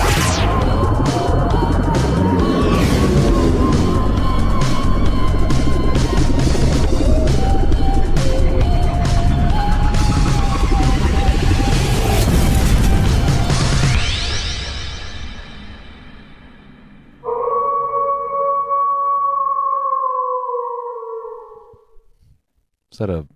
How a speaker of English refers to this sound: Is that an air raid siren? No, it's wolves.